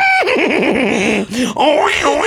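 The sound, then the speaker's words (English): A person vocally imitates a horse's neigh: a loud, wavering whinny that drops and trembles, breaks off briefly, then rises in a second quivering burst. “You're not neighing. Your trusty steed is here.”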